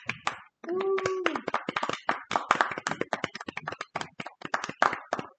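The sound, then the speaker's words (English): A small group claps together in a quick, uneven burst of applause lasting several seconds, with a brief vocal cheer or whoop near the start rising above the hand claps. “Round of applause.”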